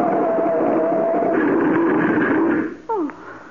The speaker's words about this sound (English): Oh, thank heaven. We hit a tree instead of going over. Yeah. I managed to twist the wheel enough to avoid that.